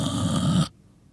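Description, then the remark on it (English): A person imitates a loud, rasping snore in one drawn-out breath, which cuts off abruptly into near silence. “Oh, that was me snoring, by the way.”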